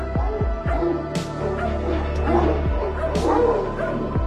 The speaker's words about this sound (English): A convoy of trucks carrying police dogs just sped in through the big gates!" Soon, we heard loud barking from inside the palace.